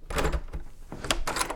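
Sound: knock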